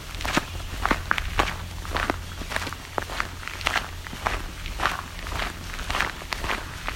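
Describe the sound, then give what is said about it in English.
Steady footsteps crunch along a trail at Rush Cove near Lion's Head, Ontario, on the Bruce Peninsula, at an even walking pace, each step a short gritty scuff over a low rumbling background, with no talking. “I'm going to head off to a side trail.”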